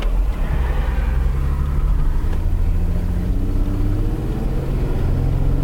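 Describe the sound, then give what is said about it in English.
The V6 engine of an older truck revs up and accelerates, heard from inside the cab as a steady, loud low rumble with rising harmonic tones, no talking over it. “Sounds like a sports car from the inside.”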